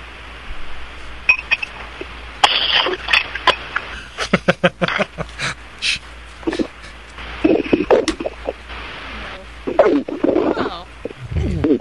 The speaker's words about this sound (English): He's going to shotgun a Brooklyn Lager on the air for Drunk of the Week.